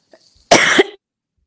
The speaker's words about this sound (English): Let me cough super quick.